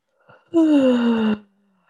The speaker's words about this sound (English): Yawn. Wiggle some fingers and toes. Yeah, that was a good one.